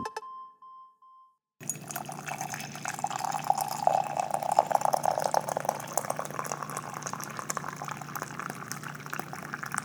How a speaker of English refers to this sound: we've just been using the same coffee pour for probably, like, 70 episodes now